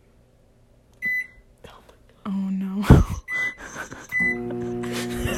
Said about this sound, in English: We have the loudest microwave in the world.